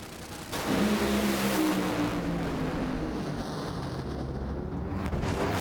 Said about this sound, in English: where the engine disintegrated and just blew the fiberglass body off the car. In a run, and then this past week happened again.